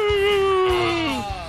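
Steve-O's pet dog whimpers in one long, high, steady whine that slides downward in pitch at the end, fairly loud, with soft low thumps underneath.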